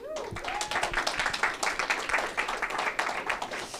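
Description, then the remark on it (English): The audience at Let's Get Digital, a monthly meetup for marketers, breaks into steady applause for themselves for showing up, many hands clapping in a dense, crackling patter that holds at a fairly even level throughout, with a brief voice-like whoop near the start. “Give yourselves a round of applause for showing up.”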